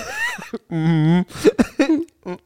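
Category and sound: human body sound, coughing and throat clearing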